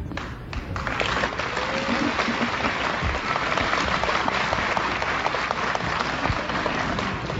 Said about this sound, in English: What's more Japan than finishing your promo and getting a standing ovation? A very polite applause from everyone in the room.